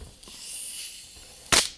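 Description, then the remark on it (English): A bottle of Brio soda being opened: a soft, steady hiss of the cap twisting, then a sudden loud burst of fizzing gas near the end. No one speaks. “We're about to open up a bottle of Brio, so you're going to hear the great sound effect.”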